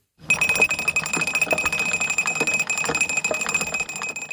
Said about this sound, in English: Cycling on many fantastic canal paths, I couldn't miss the sound of a lock gate winding. Incidentally, this is the note of D sharp.